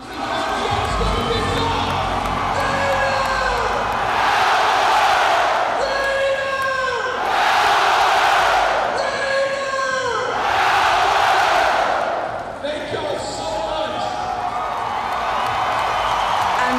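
A loud arena crowd at a basketball game roars and cheers continuously, with rhythmic surges of shouting and screaming swelling in waves, full throughout before easing slightly near the end.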